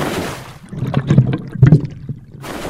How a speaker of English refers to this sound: It's quite cold, but it feels really good. I'm just going to dive under the water.